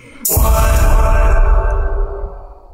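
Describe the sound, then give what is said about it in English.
A sudden loud, bass-heavy hit with a reverb effect, at the end of a spoken countdown, blooms into a thick, washed-out reverb tail that rings on for a couple of seconds before slowly fading, with no talking. “You got freaky with that little reverb on there.”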